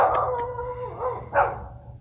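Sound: dog howling and barking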